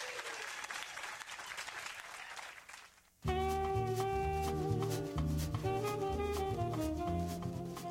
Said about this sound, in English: Can you just all kind of like give me a round of applause on how much we're going to fight with her?